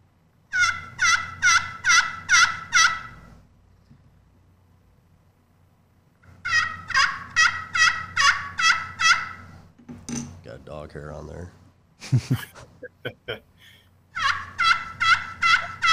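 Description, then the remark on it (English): Rhythmic runs of sharp, raspy turkey yelps scraped from a Woodhaven slate turkey call with a striker, played loud in three bursts, with a short stretch of speech and scratching between them. “This is slate. It's a Woodhaven.”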